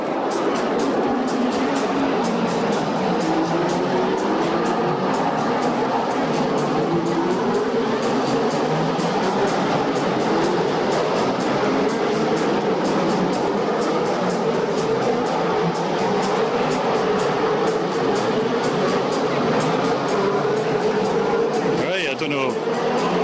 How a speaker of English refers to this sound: That was the sound of 21 Formula One cars roaring past at full speed. Amazing.